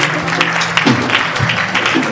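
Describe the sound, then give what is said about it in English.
A church audience claps together steadily to applaud the Lord, a dense, sustained patter of many hands, with a faint voice murmuring underneath. “Church, let's just applaud the Lord together.”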